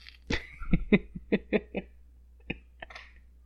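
A run of short, dry coughs: a cluster of quick bursts early on, then a pause and a couple of softer, isolated coughs near the end. No talking.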